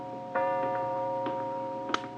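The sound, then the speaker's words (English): A clock, running about 5 minutes slow, ticking with a handful of soft, slightly uneven ticks over a steady low electrical hum, fairly quiet, with no one talking. “Is that clock right, Buzz?”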